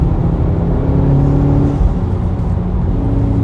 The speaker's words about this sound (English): Oh, I love that blow off sound. It's nice. I would actually prefer it if it was stock, but. I love that sound.